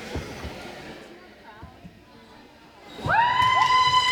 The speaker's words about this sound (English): The crowd is going wild as the LA Municipal Dance Squad takes the field.